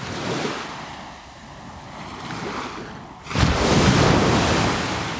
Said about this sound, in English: You'll learn how, thanks to Wacker Elastosil film, energy from the sea's relentlessly crashing waves can be used in the future to generate environmentally friendly power.